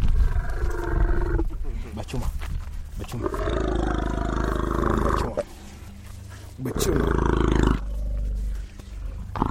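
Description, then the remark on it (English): Young elephants romping in a dusty clearing in Kenya on a bright, warm day call out loudly and repeatedly, with deep, growling roars and rumbles in several long bursts, separated by brief quieter gaps. “On a bright, warm day in Kenya, young elephants romp in a dusty clearing.”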